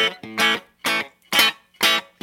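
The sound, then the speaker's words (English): A butterscotch Telecaster electric guitar with a black single-ply pickguard, plucked with the fingers in a snappy chicken-picking style: four bright, twangy bursts of notes in a steady rhythm, fairly loud with a slightly driven tone, and no voices. “If I just pluck with my fingers, you'll hear that kind of chicken pickany.”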